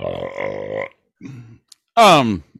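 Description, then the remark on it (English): A long, deep, rumbling burp after drinking Blood and Honey beer, followed by a brief low grunt and then a loud, sharp vocal outburst with falling pitch. “Okay, so Blood and Honey really does give you the burps.”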